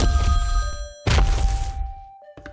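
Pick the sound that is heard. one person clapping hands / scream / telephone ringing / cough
telephone ringing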